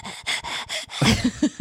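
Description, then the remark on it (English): Quick, shallow breathing demonstrated by a person: four short airy breaths in a fast rhythm, then a run of brief, slightly voiced huffs, fairly loud with no talking. “Just shallow air.”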